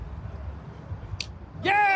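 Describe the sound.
A single sharp hand clap, brief and fairly light, over a low background rumble, followed moments later by a loud, sustained voiced cheer.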